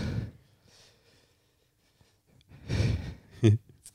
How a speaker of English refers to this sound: Sorry, everybody. I'm breathing heavy. I actually feel drunk.